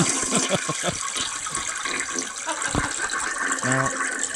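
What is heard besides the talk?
toilet flushing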